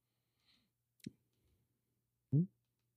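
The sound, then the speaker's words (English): A few sharp clicks at irregular intervals, one crisp snap followed later by a louder, duller knock, with near silence and a faint hum in between. “Y'all hear all the clicking?”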